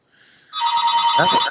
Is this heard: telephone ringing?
yes